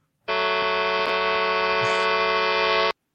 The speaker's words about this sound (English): Honk if you hear me, baby.